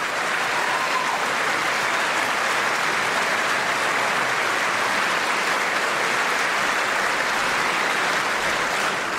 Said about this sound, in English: Applause line. Everybody, stand up. Applause line.